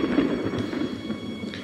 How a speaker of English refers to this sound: That thunder was pathetic fallacy. We are in the end game now. Let's talk about the thunder.